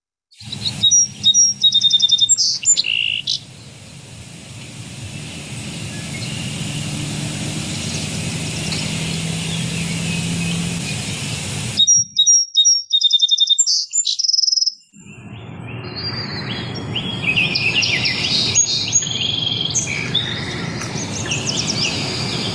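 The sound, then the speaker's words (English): Birds sing in short, high, bright chirping bursts, first near the start and again midway, over a steady hiss of outdoor background noise with faint insect-like buzzing, played from a recording in the Merlin bird song app. No one speaks. “And this is just about 2 minutes, but it utilizes a lot of the latest computer learning technology to help people learn bird song.”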